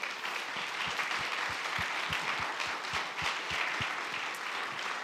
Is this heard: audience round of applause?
yes